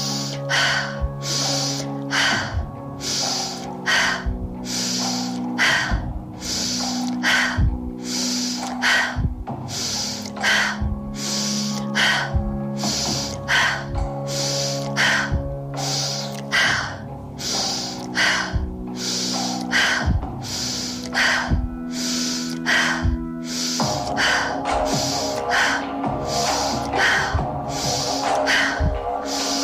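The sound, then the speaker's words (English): Rapid, forceful breaths of a breathing exercise pump in a steady rhythm, sharp bursts of air repeating about once a second over a sustained background drone, loud throughout. “Breaths.”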